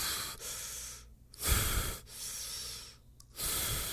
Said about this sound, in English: So she saw him put a box inside a car as her husband huff and puffs. You can hear him.